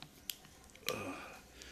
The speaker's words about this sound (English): Man, excuse me, folks. Take a little swig of the water here.